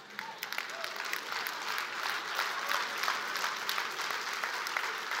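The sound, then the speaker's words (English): An audience of teenagers and parents claps steadily for several seconds, a dense wash of many hands with sharper individual claps poking through, at an even level throughout. “Somehow I just think, you know, I measured claps sometimes that the teenagers were clapping a lot louder right there than the parents were.”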